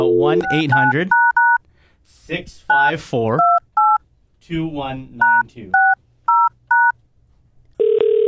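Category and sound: signal or alarm, telephone keypad dialing tones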